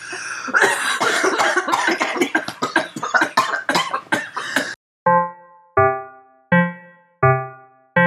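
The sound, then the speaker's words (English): A loud fit of harsh, rapid coughing after a hit from a THC extract vape cartridge lasts several seconds. It then stops and gives way to four evenly spaced ringing, bell-like tones that each fade out. “I was going to say sipping on, but we are also choking on a THC extract vape, a little cartridge that is from Blue Dream, and it tastes so good.”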